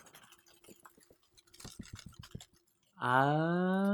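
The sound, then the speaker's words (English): Paper rustles and crinkles in quick, scratchy bursts for a couple of seconds, then a loud, sustained, high-pitched whine abruptly takes over until the end. “Oh, our producer's very excited at all this wrestling all paper.”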